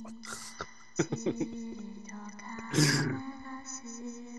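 Choppy, garbled digital distortion from a participant's glitching call connection during a recording: stuttering clicks and fragmented tones, with two harsh bursts of static-like noise. Any voice is broken into fragments.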